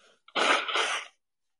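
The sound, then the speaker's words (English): A single loud nose blow into a microphone by a person with a runny nose: a harsh, breathy burst of about a second that rises and trails off into silence, with no talking around it. “Yeah, blowing my nose on a microphone. That's absolutely disgusting.”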